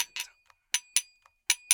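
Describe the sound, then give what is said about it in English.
Shot glasses clink together in a quick, irregular series of bright, ringing taps, about six sharp hits with a few softer ones between, each leaving a thin high ring. No one speaks. “The shot glasses, the shot glasses.”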